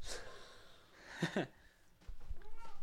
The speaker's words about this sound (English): Freaking cat. Loud boy.